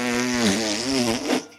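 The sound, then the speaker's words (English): A single drawn-out fart noise, buzzy and wavering in pitch, lasting about a second and a half, loud, with no talking. “That's what I do when I see the people on Jeffrey Epstein's flight log, because they're big buttheads, and they're just farting.”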